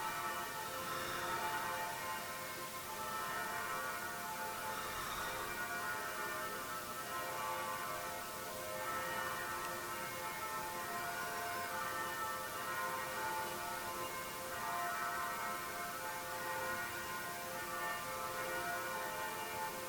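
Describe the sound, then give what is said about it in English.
Church bells peal steadily throughout, their overlapping tones blending into a continuous ringing wash, evenly loud, with no voices present. “There's a church bell.”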